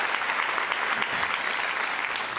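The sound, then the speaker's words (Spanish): An audience applauds for God, a dense, even wash of many hands clapping at a constant loud level with no voices standing out. “Dele fuerte aplauso a nuestro Dios.”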